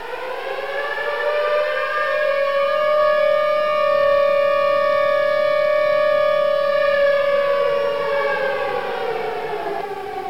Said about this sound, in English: I need that siren sound, like, somewhere.